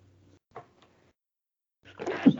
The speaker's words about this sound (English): Oh, sneezing. Bless you.